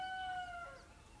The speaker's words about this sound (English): Anyway, you can hear the geese going mad up the back there. Absolutely mad.